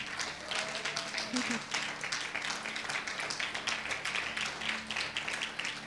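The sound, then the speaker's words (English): An audience claps steadily for about six seconds to honor a veterans' service, a dense, crackling wash of many hands at fairly even loudness, with faint murmuring voices underneath. “we wanted to just honor you so you can stand and we just clap for him just to thank him for what he has done.”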